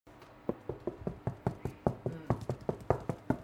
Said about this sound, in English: So I got to turn it over. Oh, you turn it over. Right. I didn't know that part. And gives the damper a knock.